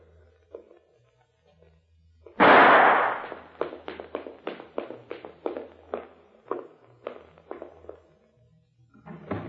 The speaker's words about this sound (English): I started down the stairs.